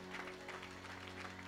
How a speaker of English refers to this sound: Hallelujah. Hallelujah. Oh, let's give the Lord a hand clap of praise in Jesus' wonderful name.